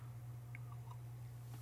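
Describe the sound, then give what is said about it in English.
A quick, quiet sip of a drink: a few soft wet mouth clicks and a slight slurp over a steady low electrical hum, with no one talking. “Let me take a quick sip and tell you what I think about God.”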